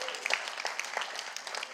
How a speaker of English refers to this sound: Round of applause for my dad, he's awesome.